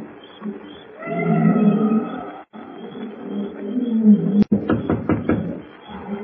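Jungle night sounds: a steady insect hum beneath long, wavering baying and roaring calls of wild beasts, then a sharp crack followed by a run of rhythmic grunting pulses.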